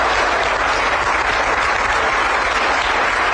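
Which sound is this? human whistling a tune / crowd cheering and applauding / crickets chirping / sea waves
crowd cheering and applauding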